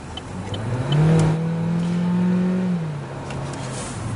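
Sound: car pulling out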